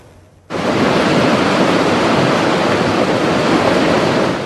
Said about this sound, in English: This is Cherry Creek, west of Kamloops on Highway 1. Locals monitoring the rising waters raging through their rural properties.